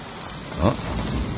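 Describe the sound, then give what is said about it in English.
Steady rain from a summer thunderstorm hisses across a surface in a dense, even wash, with a brief low rumble of thunder swelling midway through before the downpour carries on. “Storm clouds blot out the sun. Rain's arrival has us scurrying into our small, portable abode, the tent.”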